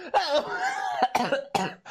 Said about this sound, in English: He doesn't cough in the movie, but I just started coughing.